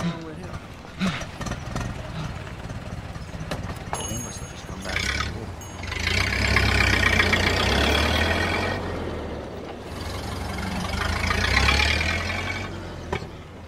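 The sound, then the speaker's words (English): A car engine rumbles and roars in two loud, sustained surges, with a few sharp backfire pops and bangs before them from a stuck intake valve, mostly drowning out any background voices. “It's just the car. It must have backfired. Stuck intake valve.”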